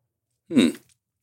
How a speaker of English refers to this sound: so you like keep it in your mouth a little longer. Yeah, just coating your tongue, right? Or chewing your whiskey.